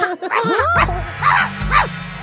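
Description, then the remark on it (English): A child imitates a dog, letting out a yelping whine followed by two sharp, loud barks in quick succession, over a low steady hum. “And then when they're talking about this movie, the two kids just start barking like dogs.”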